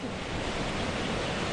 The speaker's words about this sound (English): We're on the Turnbull River at the intake of a small hydro scheme which has powered the township